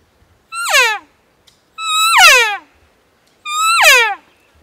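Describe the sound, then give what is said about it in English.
Three relaxed mature cow elk calls, each a smooth, fairly deep mew that slides downward in pitch for about a second, separated by short silent pauses with no talking. “Here's kind of a mature cow. It's going to be able to have a little deeper tone to it, and it's going to be kind of a relaxed sound.”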